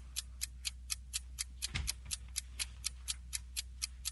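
A ticking game show countdown clock for a quiz round: crisp, evenly spaced ticks about four per second, steady, over a faint low hum with no talking.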